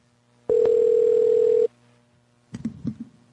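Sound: phone line tone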